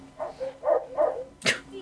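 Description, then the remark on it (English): A puppy barks in a quick run of three or four high, whiny yips, then lets out one sharper, louder bark, with no talking. “Puppy!”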